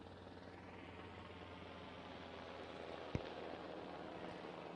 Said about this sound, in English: If you're watching on Facebook or Christian World Media, a huge helicopter just flew over us. It looked like a military helicopter.